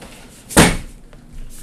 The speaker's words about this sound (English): Shit, I could close this door.